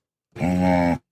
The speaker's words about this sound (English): I'm going to go animal. That is an animal. That is a dog.